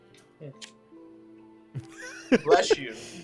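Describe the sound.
A sudden, sharp sneeze bursts out near the end, following a stretch of quiet, low voice sounds.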